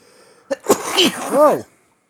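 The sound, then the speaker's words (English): A single loud sneeze with a sharp intake and a burst of noisy breath, followed by a brief vocal trailing sound, then silence. “Sneezed.”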